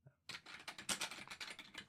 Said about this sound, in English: You can hear my clacking, can't you? I'm going to talk about my keyboard in a second.